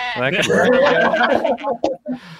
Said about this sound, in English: I don't have a smooch sound effect, but I do have... I got one. There you go. Maybe a goat? I don't know.